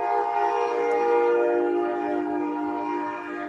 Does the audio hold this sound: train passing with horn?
yes